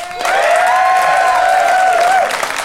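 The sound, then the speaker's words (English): A live audience at the Pleasance bursts into loud, sustained applause, voting for one side of a debate on a show, lasting a couple of seconds, with clapping mixed with whoops and a drawn-out whistle-like cheer before it tapers off. “But if you side with Gabby and Ben and John, applaud now.”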